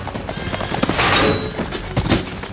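Horse hooves clatter while heavy thuds and a crashing tumble burst through as King Arthur is knocked off his horse and hits the ground; no talking.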